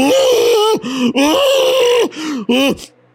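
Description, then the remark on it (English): A human voice imitates a cow screaming in terror: four loud, strained, moaning wails with bending pitch, separated by brief gasping breaks, the last one cutting off abruptly. “And then you hear a cow screaming in terror.”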